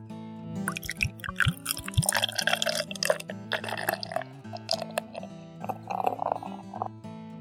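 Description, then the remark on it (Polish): Beer pours into a pint glass, a steady glugging, gurgling stream with bubbly splashes that runs for several seconds, rising slightly in pitch as the glass fills and forms a thick head of foam. No one speaks. “Pinta nalewa się z ładną pianą, gęstą.”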